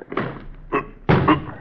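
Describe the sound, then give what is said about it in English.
Heavy thuds and rattling bangs against a locked door as men shove it and try to force it open, three or four loud impacts over a second and a half, the last one sustained and straining. “We'll try to force it.”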